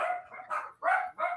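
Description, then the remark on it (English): Dogs bark in a rapid string of about five sharp, overlapping yaps, fairly loud, with no one talking. “If anyone can help me with these dogs, it would be great.”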